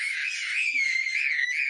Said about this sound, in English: just screaming randomly for no reason right now.